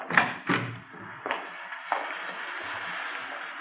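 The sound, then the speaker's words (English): A side door is opened and closed: a couple of quick knocks and a latch-like clunk, then a lighter thud, followed by a steady hiss of background air. “You can go out the side door then.”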